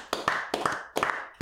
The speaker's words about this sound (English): Clap